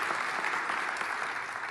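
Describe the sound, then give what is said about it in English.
Steady applause from a church audience for a child, a dense wash of many hands clapping at an even, sustained level for the whole stretch, with no voices standing out. “Give him a hand.”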